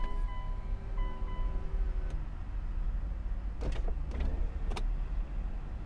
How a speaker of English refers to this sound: I need to roll down the windows. It's actually getting a little warm in here.